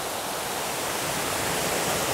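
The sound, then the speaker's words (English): A creek rushes steadily, a dense, even hiss of flowing water with no pauses and no voices. “Boy, there's plenty of good clean water right there.”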